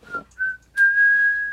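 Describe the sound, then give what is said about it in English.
A person whistles a short tune, a few clear pure notes ending in one long held tone, with a breathy start and no talking. “I still whistle that sometimes, just to...”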